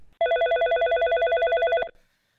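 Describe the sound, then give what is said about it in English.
A telephone rings once, loud, for an incoming call: a rapidly warbling electronic trill lasting about a second and a half, with no voices, then silence. “But sometimes it's very easy to choose which ones not to run, such as this very exciting phone call.”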